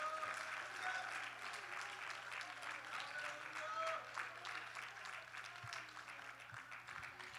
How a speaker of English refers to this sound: Would you clap your hands to the Lord and give him praise this morning?